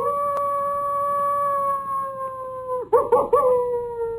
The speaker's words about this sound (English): take us out with a little bit of coyote sound, won't you?